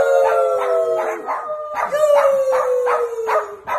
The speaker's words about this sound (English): She posted a video of her dogs getting in on the singing. Take a listen.